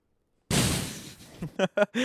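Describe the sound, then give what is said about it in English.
A person voices an explosion with a sudden, loud, breathy burst that rumbles and fades, then finishes with a few short voiced grunts. “Explosion.”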